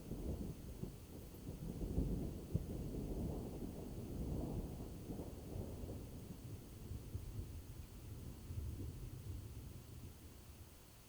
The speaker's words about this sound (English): The rolling sound of thunder. And when you look up, you see the lightning burn and flash and dance across the horizon out there beyond on the dark plains.